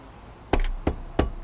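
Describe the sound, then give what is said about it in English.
Three sharp taps on window glass, evenly spaced about a third of a second apart, fairly crisp against a quiet background. “wakes up first to... the sound of tapping at your window.”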